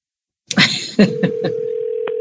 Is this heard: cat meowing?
no